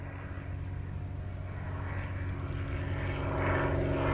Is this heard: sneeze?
no